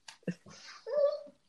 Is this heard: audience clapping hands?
no